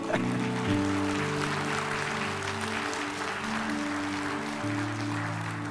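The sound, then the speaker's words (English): An audience claps steadily for several seconds after a prayer, a dense, even wash of applause layered over sustained low musical chords holding underneath throughout. “Come on, let's clap.”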